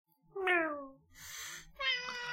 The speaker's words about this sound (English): So, meow.